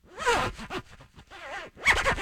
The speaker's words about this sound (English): Here's a little Foley. I just put my jacket on. Here's a zipper sound.